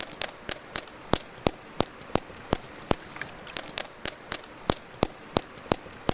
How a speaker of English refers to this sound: Turns out the key to underwater echolocation is vocal fry. Yeah, that creaky voice that some people love to hate, only this time in a whale. Here's what it sounds like.